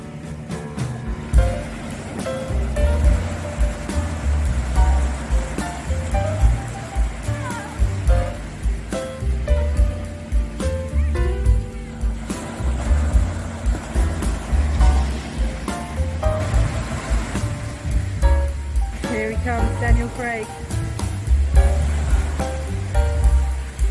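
Sea water and waves washing continuously at a beach, a loud, steady rumbling surge with swells rising and falling, with no clear pauses.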